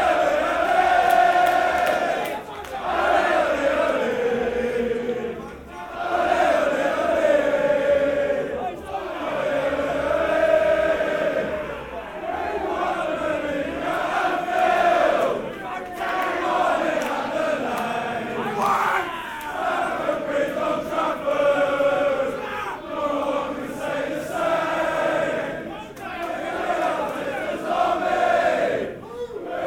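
A large crowd of football fans, the Ashburton Army, chants loudly and continuously as they march through the tunnel on Hornsey Road to the ground before kickoff, many voices rising and falling together in rhythmic, sung phrases with occasional shouts.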